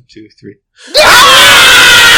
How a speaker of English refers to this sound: 1, 2, 3, scream.